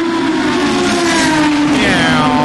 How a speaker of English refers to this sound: What you can't hear is, as that Corvette pulled out, he's got this hot whiff of brake dust and hot oil. And the air's quite cold now and still, it's coming up to 3:10 in the morning.